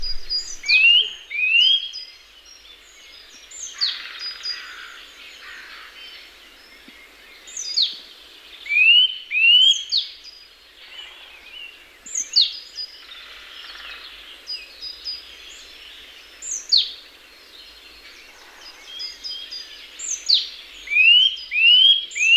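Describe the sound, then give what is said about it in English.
Loud, ringing nuthatch calls repeat in quick bright bursts of rising notes, clear, recurring every couple of seconds over a faint background of other birdsong. “The nuthatch has a loud ringing call, a bit like a stone bouncing across ice.”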